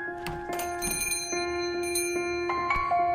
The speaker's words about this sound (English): The bells over the door jingle as she leaves.